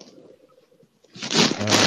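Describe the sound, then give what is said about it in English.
Loud rustling, like crinkling paper or a bag being handled by one of the people talking, bursts in after a second of faint, quiet shuffling and keeps going to the end. No one speaks. “I just had you're rustling that. A lot there”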